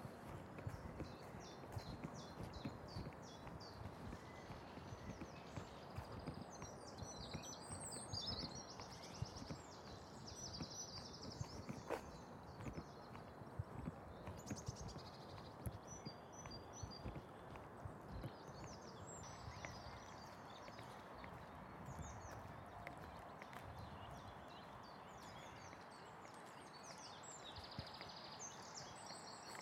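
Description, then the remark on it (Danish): Birds, including a woodpecker, sing and chirp steadily outdoors, their bright calls overlapping throughout, set against a constant low rumble of wind or rustling ambient noise. No one speaks. “Kan man høre på fuglene, hvor vi er?”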